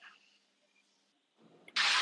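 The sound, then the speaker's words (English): A bus engine, heard by someone riding on the bus, runs with a low, steady rumble, faint at first, then a loud, broad rushing noise abruptly swells up and holds through the final moments. No one speaks. “Right now, I'm on the bus.”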